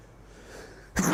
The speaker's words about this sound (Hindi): कई कबार क्या होता है एकदम यूं छींक का माहौल बन जाता है।